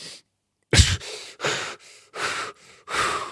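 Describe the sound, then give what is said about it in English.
A person acts out what usually happens when someone with acute panic or anxiety holds their breath: a brief pause of silence, then a sudden sharp gasp for air followed by four quick, heavy, ragged breaths in steady rhythm, fairly loud. “You ask someone with acute panic or anxiety to hold their breath, this is usually what happens.”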